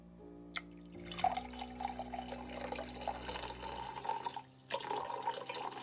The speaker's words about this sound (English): This is the sound of the filtered water. This is the sound of the filtered water spilling into the glass.